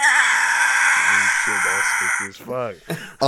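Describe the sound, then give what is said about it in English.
A voice mimics a creature's harsh, sustained screech for about two seconds, loud and raspy, with talking starting underneath it and continuing after the screech breaks off. “What you guys see, actually, what you hear first is this creature screeching at you.”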